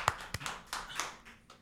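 A brief burst of hand clapping welcoming a guest: a few sharp, scattered claps with irregular timing that fade quickly, with no voices.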